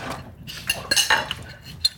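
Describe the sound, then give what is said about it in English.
Spoons clink and scrape against dishes as chicken is eaten with them, in a few bright, irregular metallic taps, with a soft rustling clatter between them and no voices. “Ah, a lot of people eat chicken with spoons.”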